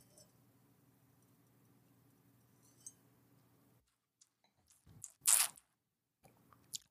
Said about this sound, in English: I'm going to take a sip. I mean, it's a wine that would work in a lot of different situations.